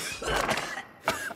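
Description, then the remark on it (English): Two short, dry coughs with a brief pause between them, each a harsh, breathy burst with no wet rattle. No one speaks. “Second, a dry cough, like this.”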